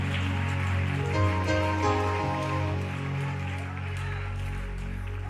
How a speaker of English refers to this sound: That's just a hand clap. There should be some excitement in this room.